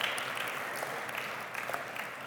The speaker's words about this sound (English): Thank you for your participation. How about a round of applause for all of these who have completed Disciple?